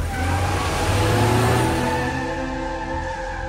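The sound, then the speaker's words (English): A car engine revs loudly, its steady mechanical drone shifting in pitch as the vehicle pulls off, fading slightly toward the end as it drives away. No voices. “Did you see anybody get in that car?”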